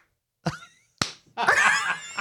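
One person clapping slowly, three sharp, loud single claps spaced unevenly, with a brief warbling tonal sound filling the gap before the last clap.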